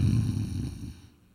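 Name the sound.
voice imitating snoring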